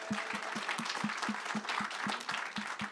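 An audience at an evening event applauds a woman who helped plan it. A dense wash of clapping with one loud, rhythmic clapper punching through in an even, quick beat the whole way through. No one speaks.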